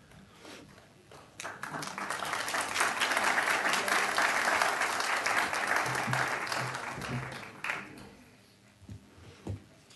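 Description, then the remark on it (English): An audience at a commission meeting breaks into steady, dense applause for the CEO of South Florida Wellness Network as she is presented with a proclamation; it swells quickly, holds loudly for several seconds, then tapers off into a few scattered claps and faint murmurs. “She always deserves applause.”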